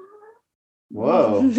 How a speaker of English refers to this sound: I guess the cat agrees with me. Did you hear that? Yeah. That means hell yeah.